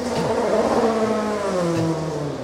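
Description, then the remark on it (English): Loud race cars roar past during a practice session, engines rising and falling in pitch as they accelerate by, filling the whole stretch with continuous mechanical noise and no speech. “Let's wait till these cars leave here. I couldn't hear you.”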